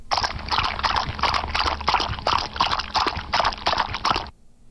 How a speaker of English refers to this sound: Okay, so in case you didn't catch what that is, that's a horse walking in water. A horse walking in water.